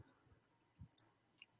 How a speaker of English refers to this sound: I love the sip. Perfect time. That was some good water.